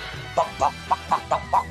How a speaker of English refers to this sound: Sounds like a scratchy robot chicken.